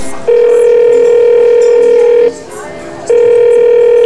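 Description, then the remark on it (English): A telephone being dialed to reach the Examiner newspaper: a steady, buzzing line tone sounds for about two seconds, breaks off briefly, then starts again at the same pitch. “I need to use your telephone.”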